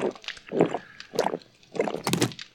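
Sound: drinking water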